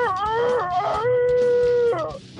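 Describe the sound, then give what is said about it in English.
A caller leaving a message on The Preston and Steve Love You, Hate You line, calling himself a beakless rooster, imitates a rooster's crow: a couple of quick rising notes, then one long, strained, steady high note that breaks downward at the end. It is loud, with no other talking. “I'm a Beakless Rooster.”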